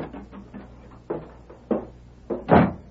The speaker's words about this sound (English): Red Murphy looked up in surprise at the sound of the door.